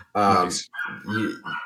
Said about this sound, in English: you should look at my attack dog going crazy.